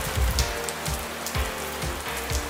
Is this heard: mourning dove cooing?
no